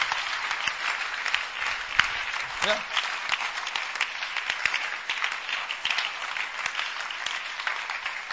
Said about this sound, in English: I thought you'd be clapping for Jesus. Healing Jesus!